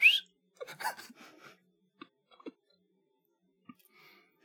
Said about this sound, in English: Maybe it's the length of the whistle. It all sounds the same, though. They hit the same length with every single one. Well, they're just pressing a button for the dramatic effect, okay? They're just pressing the button.